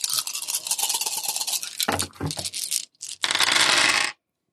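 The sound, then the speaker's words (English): Nine dice are rolled in a tabletop game, rattling and clattering across a hard surface in a dense rolling burst with a brief pause, then a final loud scatter before stopping abruptly. “You have 9 dice now against their 4.”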